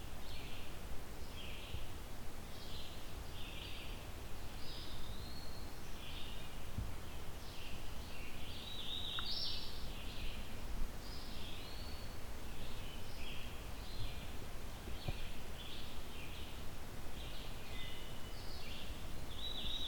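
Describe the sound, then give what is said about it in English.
A vireo sings repeated short, warbling phrases throughout, clear, over a steady background hum of wind or noise with faint rustling. “Let's see if I can get a better angle where the vireo isn't as overpowering.”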